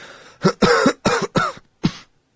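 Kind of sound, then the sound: human body sound, deliberate fake cough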